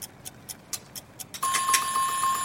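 A kitchen timer in a cooking competition ticks steadily with a quick, even beat, then bursts into a loud, sustained ring as time runs out, continuing to the end. No voices are present.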